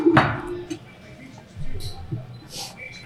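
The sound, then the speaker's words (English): A sharp ceramic clink rings out near the start, followed by a few softer knocks and scrapes as side dishes and a bowl of rice are set on a table, with quiet background chatter underneath. “I'm gonna start you off with some side dishes and. Dude, this rice is too good. Do you wanna give him the bowl?”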